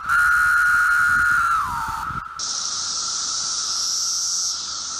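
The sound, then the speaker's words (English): Periodical cicadas that spent 17 years underground buzzing loudly and continuously, reaching about 108 decibels, about the level of a running lawnmower: a steady droning whir that sags in pitch and cuts off, then gives way to a sustained, high, hissing buzz. No one speaks. “So these cicadas have been hanging out for 17 years underground.”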